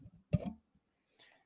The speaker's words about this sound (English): Sorry, just clicking on my microphone.